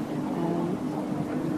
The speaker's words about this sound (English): Well, I don't quite know what the sound quality on this is going to be like, because it's a little windy up here, but I'm going to give it a go.